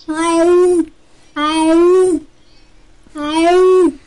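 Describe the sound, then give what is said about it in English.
A person imitates a cat's distressed yowl three times, each drawn-out, wavering cry lasting under a second, separated by brief pauses, loud. “when a cat's pissed off or in distress or looking for you or something, it sounds like this.”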